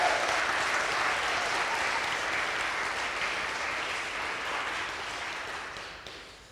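Sustained applause from an audience welcoming guests up to tell their story, a dense wash of many hands clapping that holds steady for several seconds before gradually tapering off near the end.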